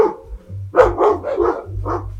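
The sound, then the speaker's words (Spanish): Dogs near a house bark in a quick, uneven run of about five sharp, clear barks, with a low steady hum running underneath and no one talking. “Hay muchos perros por mi casa.”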